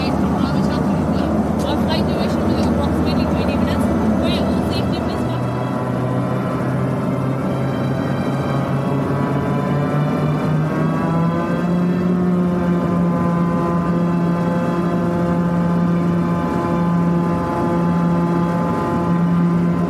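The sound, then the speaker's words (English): A loud, steady airplane engine drone from a backup plane that arrived from Kathmandu fills the scene during boarding, its humming tones shifting and rising partway through, with indistinct voices murmuring faintly underneath. “Finally, getting on the plane.”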